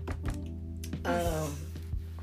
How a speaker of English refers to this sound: I'm going to knock on some wood.